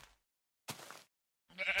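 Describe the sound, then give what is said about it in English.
Two short bleats of a pink sheep, each a wavering nasal baa lasting under half a second, separated by a brief silence. They are moderately loud, with no talking. “Oh, run, run, pink sheep, run!”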